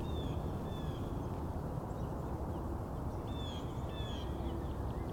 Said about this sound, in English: So it's a good time for all these bird songs to get started. Most of these birds are on migration, but the cardinals are on territory. As are the chickadees.